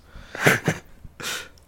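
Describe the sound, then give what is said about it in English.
A sharp sneeze with a couple of quick breathy bursts followed by a longer, airy exhale, heard on its own without any talking. “Bless you.”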